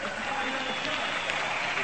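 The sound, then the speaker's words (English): Steady applause from a large baseball stadium crowd of St. Louis fans for Cardinals shortstop Marty Marion as his name is announced over the public address system, a dense, even wash of clapping with a murmur of voices mixed in, holding at a constant level throughout. “He got a nice round of applause.”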